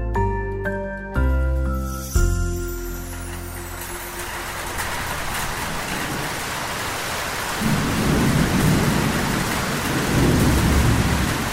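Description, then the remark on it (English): After a few brief musical tones, a steady downpour of heavy rain sets in, with deep rolls of thunder rumbling low beneath it toward the end. No voices. “It rained, and it rained, and it rained.”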